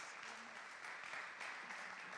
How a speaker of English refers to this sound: Come on, let's clap our hands and give God more praise.